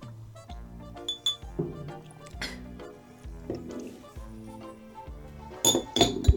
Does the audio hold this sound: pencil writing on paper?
no